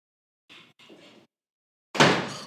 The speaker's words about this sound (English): Hey, girls, shut the door, please.